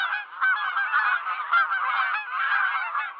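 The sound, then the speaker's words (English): A flock of geese honking continuously, many overlapping nasal calls forming a dense, steady clamor that stays loud throughout, with no talking. “Okay, you just threw me in the middle of my worst nightmare because I have a fear of birds. So instead of like being comforted by these sounds, the hairs on my back immediately stood up and I started darting around my house thinking, where are they?”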